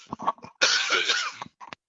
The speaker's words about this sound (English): Excuse me, I got a cough.